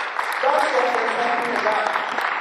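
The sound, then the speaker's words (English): A crowd claps for the Lord steadily for a couple of seconds, a dense wash of many hands, with cheering voices rising through the applause. “Clap for the Lord.”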